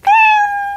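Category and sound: animal, cat meowing sound effect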